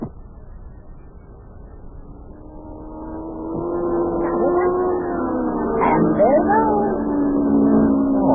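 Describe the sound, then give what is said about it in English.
A racing car's engine drones steadily and swells louder as it comes around the bend of a track toward the listeners, its pitch wavering briefly near the end as the roar holds strong. “Boy, I'll bet he's making over 100 miles an hour already.”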